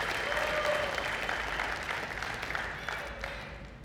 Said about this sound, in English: And this year, give or take a few years, the church is 2,023 years old. So can we clap for that? Happy birthday to the church.